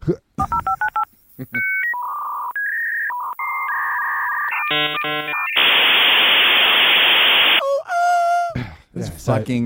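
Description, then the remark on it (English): A voice mimics a dial-up modem connecting: stepped dialing beeps, paired tones, then a long hiss of static and warbling handshake squeals, loud, with a brief spoken bit at the end. “Do you want the dial-up tone? Modem. Dial-up tone? Yeah, yeah. Okay, it goes kind of like this.”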